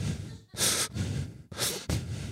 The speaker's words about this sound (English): I'm just going to be looking forward, breathing through my nose.